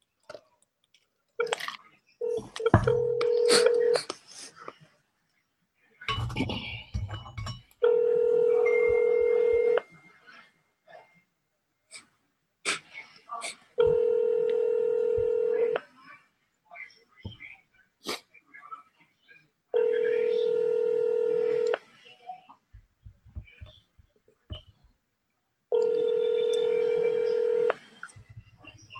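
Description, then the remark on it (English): A phone call rings out unanswered: after a few brief dialing beeps and taps, four steady ringback tones sound, each about two seconds long, repeating every six seconds. “She obviously not gonna pick up the phone”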